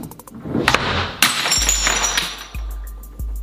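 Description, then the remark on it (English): A glass jar of pasta sauce shatters with a sharp crash, followed by tinkling, clinking shards scattering, then a few low thuds as debris settles. “we're going to switch out the beans for this glass pasta, which, well, pasta sauce. So this should break it.”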